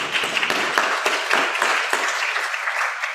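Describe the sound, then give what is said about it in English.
An audience at a Sunday morning service claps steadily for the readers of the Pentecost story, a dense, sustained round of applause from many people, with no voices rising above it. “I know you wanted to clap at the time, but we saved it up.”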